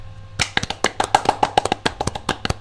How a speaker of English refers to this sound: Golf clap for that woman.